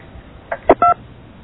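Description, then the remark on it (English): A single short touch-tone keypad beep, a steady two-note telephone tone, sounds as a caller selects an option in an automated phone menu. It plays over a thin phone-line hiss, preceded by a couple of faint clicks. No one speaks. “For technical support, press 1. For billing, press 2.”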